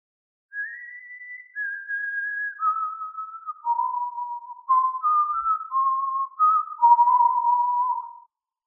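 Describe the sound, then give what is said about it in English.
Someone whistles a slow, clear tune alone, starting on high held notes that step downward, then a livelier run of shorter notes bouncing up and down before it trails off. “Can I see who's whistling?”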